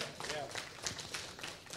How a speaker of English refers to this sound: And the church is getting bigger. Are you with me? Because we're not here for... I remember when... Yes, you can clap at that.